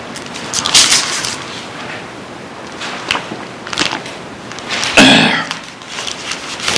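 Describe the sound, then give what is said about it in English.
A rough throat clearing bursts out once, loud and harsh, amid scattered softer rustles and clicks. “Don't mean to clear my throat in front of you.”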